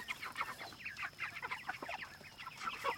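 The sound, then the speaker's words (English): A flock of meat chickens clucks continuously, a busy overlapping chatter of short, mid-pitched calls with occasional higher squawks, fairly quiet and steady throughout without any talking. “He can tell you about the meat chickens, and then...”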